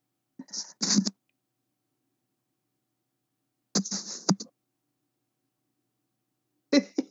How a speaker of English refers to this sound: What just happened? You sneezed, so I yelled, bless you.